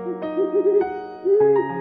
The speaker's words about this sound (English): Hey, it's Polly, our owl. She's flying in with the fun facts. Thank you so much, Polly.